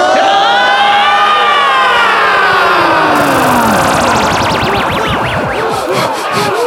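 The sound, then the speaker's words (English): A loud, dense crowd cheers and whoops for several seconds, many voices overlapping with rising and falling pitches; halfway through, the roar takes on a swirling, phased whooshing character. “Oh my gosh, the crowd's still here.”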